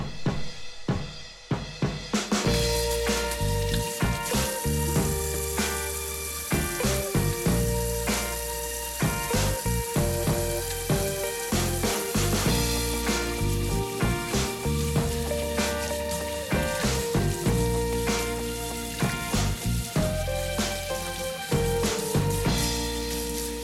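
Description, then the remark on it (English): A dense, steady hiss of October rain pattering on a skylight during a holiday stay in the northeast of England, with irregular little taps running throughout, heard beneath continuous background music with sustained tones. “You can probably hear the rain pattering on the skylight up there.”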